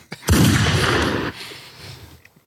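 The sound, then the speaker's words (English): A single loud gunshot sound effect: a sharp, booming blast with a heavy low-end roar that lingers for about a second before fading into a faint echoing tail. “You want a gunshot?”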